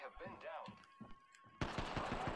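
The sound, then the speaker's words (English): Rapid bursts of video game gunfire crackle in a steady rhythm, turning dense and loud in the second half, with a voice speaking over the early shots and a thin electronic tone underneath. “Alright, there's more gunfire.”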